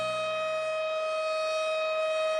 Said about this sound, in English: That's the tornado sound effect, warning alarm. Sounds like my mum doing the hoovering.